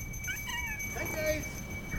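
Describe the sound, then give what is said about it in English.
Several cats, two kittens and about six or seven adults lined up under a car and eating from bowls, meow over one another in a rapid, overlapping chorus of rising and falling cries, with a steady high-pitched hum and faint background noise underneath. “Right over there, that's my senior group. Those two kittens and about 6, 7 adults.”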